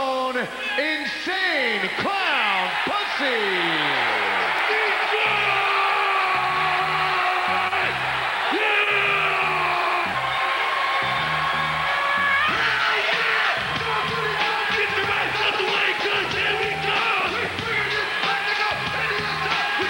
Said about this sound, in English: You sent me one that wasn't even Detroit, and the crowd was losing their shit for them.